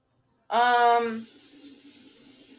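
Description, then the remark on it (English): Tap water starts abruptly with a brief, loud tonal squeal, then settles into a steady, quieter stream running into a sink, run to get drinking water. “Wait, why don't you use that to fill the Brita? Because your Brita won't fit in your sink.”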